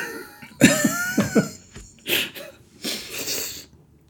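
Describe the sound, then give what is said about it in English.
Short throaty, voiced bursts like coughs or gulps, then two breathy, hissing slurps of someone sipping tea, fairly loud, with no talking. “I have a tea for anyone not listening.”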